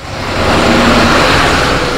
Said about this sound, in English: Cars and trucks are trying to drive through the flooded parts of Presidential Boulevard by Jefferson Street.